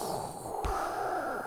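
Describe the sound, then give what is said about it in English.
A person imitates Darth Vader's mechanical breathing: a steady, raspy hiss of air with a brief snort-like catch partway through, and no talking. “Because mostly time, if people are going to do the Darth Vader impression, it always starts out with a.”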